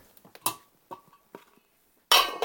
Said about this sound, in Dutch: Nou, wat we nu gaan doen is deksel erop.